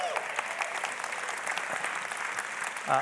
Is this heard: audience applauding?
yes